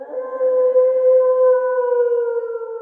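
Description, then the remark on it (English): A gray wolf (Canis lupus) lets out a single long, steady howl that holds its pitch for about three seconds, loud with no other sounds around it. “all dogs evolved from the same species, the gray wolf. Ain't that right, Mr. Wolf?”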